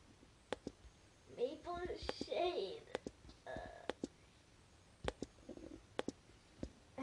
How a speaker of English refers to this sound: Sorry, there's a lot of typing.